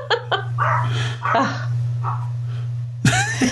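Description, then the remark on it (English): A dog, Cindy, barks at home in Canada several times in quick, irregular bursts, loud, with a steady low electrical hum running underneath throughout. “Sorry, that's Cindy.”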